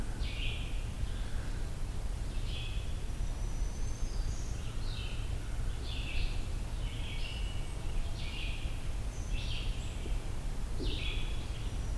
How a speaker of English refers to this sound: Red-eyed vireo.